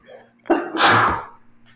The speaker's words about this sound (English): That infuriated me. Freaking hate when people sneeze loud.